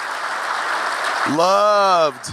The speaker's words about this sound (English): A round of applause for John. Such a talented guy.